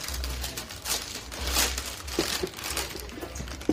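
Paper crinkles and rustles as a sneaker box is unpacked, with a steady stream of crisp crackling bursts and a few louder crunches, and no one speaking.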